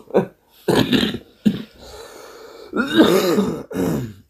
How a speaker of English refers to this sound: It's a bad sign that I cough more with a bloody vape than I do with a smoke. It's not a good thing. Damn you, vapes.